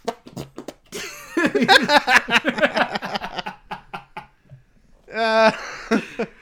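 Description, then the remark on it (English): Bursts of laughter and snickering fill the first few seconds, then a short, loud, buzzy armpit fart squelches out near the end, followed by a little more laughter. “He doesn't even fart. He does the armpit fart.”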